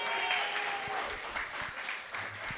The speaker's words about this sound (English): Give yourself a round of applause for coming, yeah? Big yourself up.